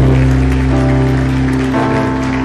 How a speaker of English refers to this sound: Go on, give God a clap of praise.